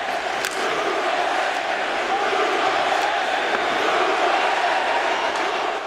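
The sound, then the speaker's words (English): A large arena crowd of Islander fans roars and cheers in a steady, dense wall of noise for about six seconds, loud and sustained with scattered shouts rising above the din. “Let the crowd take it from here.”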